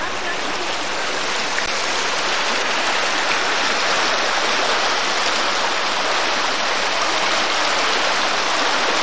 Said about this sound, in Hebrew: ועכשיו נעבור לאיפה שהמים זורמים בנתיב החדש. כל זה חדש לגמרי, זה עובר דרך השדה. אתם רואים ש... נותר פה נחל עם צוק של איזה מטר, קצת פחות אולי, 80 סנטימטר.